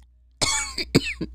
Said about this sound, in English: And I am sick today. My throat is so itchy. It's got the itchy. I just want to like scratch at it and cough and just like, oh.